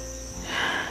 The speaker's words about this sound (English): You hear the crickets and all the chirping of the little nighttime insects. They're in the background, so it's very relaxing.